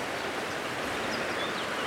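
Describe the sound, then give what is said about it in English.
A river flowing from the west round a bend rushes steadily over shallow shingle beside gravel banks and a long shingle island with a few willows, a continuous hiss and babble of moving water with no pauses and no voices, with faint high chirps just audible above it. “The river comes from the west, round a bend.”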